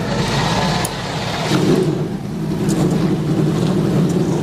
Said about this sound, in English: Dolphins quarterback Tua Tagovailoa said this before the Dixie Vodka 400. All right, huddle up. We're going to crank these engines up on one. All right. Wait, drivers, start your engines.